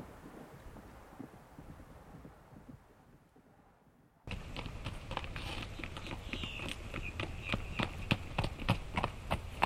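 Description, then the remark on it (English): Soft windy outdoor ambience gives way abruptly to horse hooves clip-clopping, a steady run of sharp hoofbeats over a rustling background. No one speaks. “You go get Clem, and I'll get our horses.”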